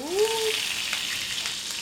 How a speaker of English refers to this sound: So the kabocha squash, sliced into wedges, goes onto a hot sheet pan, sizzling with butter and oil.